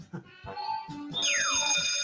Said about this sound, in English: Alarm.